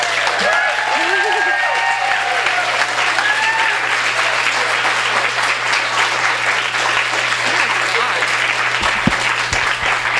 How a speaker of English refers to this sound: So let's bring her up with an enormous round of applause.